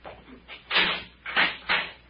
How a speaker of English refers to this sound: Get the cell door, Skip. And keep your voices down when we get on the stairway.